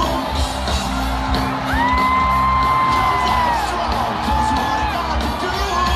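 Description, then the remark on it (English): A loud concert crowd at a show by a band, a tribute band, roars continuously as the singer's hair catches fire from sparks and he keeps singing; cheers, whoops and yells layer over a dense wash of noise, with a couple of long, rising high whoops above the din. “The fucking crowd is like, this is the most metal thing I've ever seen.”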